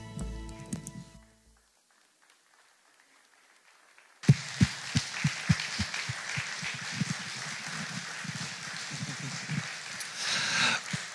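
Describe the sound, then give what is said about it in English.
A crowd bursts into applause for the mothers standing on Mother's Day after a brief lull, dense clapping with sharp individual claps standing out, growing steadily louder and fuller toward the end. “Family, they deserve more applause than that.”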